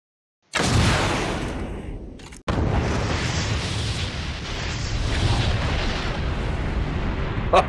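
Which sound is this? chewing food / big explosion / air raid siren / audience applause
big explosion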